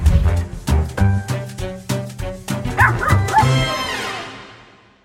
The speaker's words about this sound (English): Oh my gosh, he is the cutest little puppy dog. He is very ornery, but absolutely adorable.